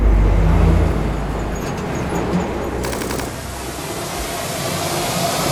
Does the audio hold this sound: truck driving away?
yes